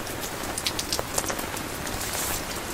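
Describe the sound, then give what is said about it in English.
Steady rain pattering on a surface, a dense hiss of small drops with scattered brighter ticks and taps, fairly soft and even throughout, with no voices. “I want you to hear the lovely pitter-patters”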